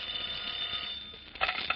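A telephone bell rings at a local FBI field office in a steady, high metallic trill that holds without a break and swells briefly louder near the end. No one speaks.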